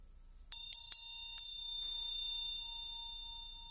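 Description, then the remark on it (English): A meditation bell is struck several times in quick succession, then its bright, clear tone rings on and slowly fades with no one speaking. “Each time as the bell resonates, consider the possibility of riding the exhale.”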